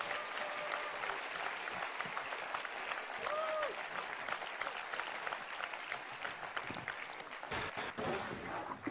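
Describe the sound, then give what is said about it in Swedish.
A crowd applauds steadily to welcome a speaker, a dense wash of clapping that holds at an even level throughout, with a few brief whistles or cheers rising above it. “Så ska vi bara ge honom ett stort varmt välkomnande.”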